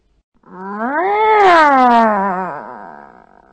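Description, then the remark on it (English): A person imitates a dissatisfied cat, making one long, drawn-out, whiny meow that rises, holds, and sags down at the end, loud with no other talk. “Okay, then we have the dissatisfied meow.”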